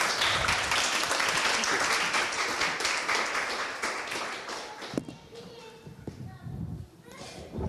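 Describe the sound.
A burst of audience applause, dense and steady for about five seconds, then thinning out as a few murmuring voices and scattered taps take over.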